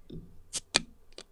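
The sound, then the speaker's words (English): A child's small plastic lunch cooler being opened: a few sharp plastic clicks and snaps from its latch and lid, spaced unevenly across about a second, with no talking. “Oh, you opened a cooler.”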